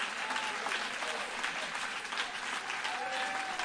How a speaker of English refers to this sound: Come on, clap your hands if you believe that right now.